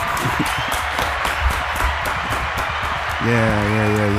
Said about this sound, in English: That clap kind of hurt.